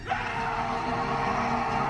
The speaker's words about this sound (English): This is the scream-off between Brendan Fraser and the warrior mummies that come out of the walls.